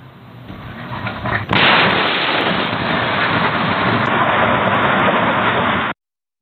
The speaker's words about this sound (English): three are injured, and three homes are destroyed after a home exploded outside Pittsburgh, Pennsylvania. At least a dozen other homes were damaged by the debris, and Ring doorbell video from a few doors down captured the moment of the explosion.